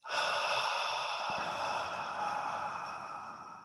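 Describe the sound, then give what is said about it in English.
A long, airy breath drawn in deeply for a count of four and then let out slowly for a count of six in a relaxation breathing exercise, steady and soft with no talking. “So you'd sort of maybe do deep breath in for a count of four. Hold for the count of four. And then let it out for the count of six.”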